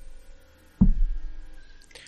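A single heavy, dull knock against a door, low and resonant, fading slowly into a faint background hum. No voices are heard.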